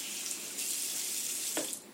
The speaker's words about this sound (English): Mom, can you turn off the water?